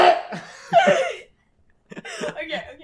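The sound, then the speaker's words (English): A few harsh coughs in two short clusters separated by a brief pause, loud and raspy with some voiced catches between the bursts. “I just coughed.”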